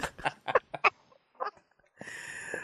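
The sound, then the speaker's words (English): A person with a bad cough gives a rapid burst of five or so harsh coughs, a pause, one smaller cough, then a strained, raspy throat sound to finish. “Sorry, guys. I have a bad cough.”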